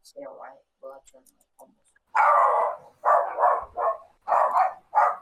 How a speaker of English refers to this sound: Whoever's dog that was.